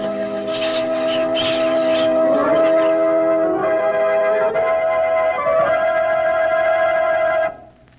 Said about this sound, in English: You should have heard the Hamelin people ringing the bells till they rocked the people.